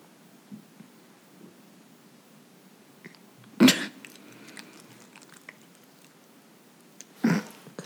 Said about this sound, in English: He's just yawning. We all get tired. Okay, the dog is right next to the mic, guys.